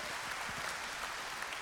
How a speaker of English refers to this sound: It's like last Sunday, we had 6 people get baptized, which was awesome. That's great. Yeah, we can clap for that. That's great.